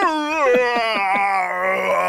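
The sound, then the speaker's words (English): A person imitates a dog with a long, drawn-out whining moan, the pitch wavering and sliding upward before settling into a steady, nasal drone that holds to the end. “I love this podcast should just be us trying to recreate dog noises.”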